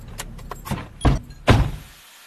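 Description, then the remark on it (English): A car pulls up and parks at Babu's car repairs, its low engine rumble fading out amid a few sharp mechanical clicks and two heavy thunks, with no one talking. “I'll park here.”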